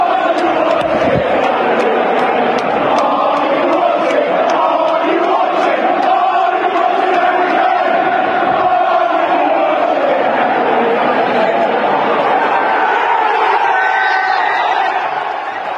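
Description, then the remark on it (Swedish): A large crowd of Tottenham fans at the Tottenham versus Manchester City football match in London chants "Are you watching Harry Kane" in unison, a loud, steady wall of voices, then breaks into cheering at the end of the match as the chant gives way to roaring applause and whoops. “Are you watching Harry Kane, sjöng publiken, och sedan jubel för matchslutet.”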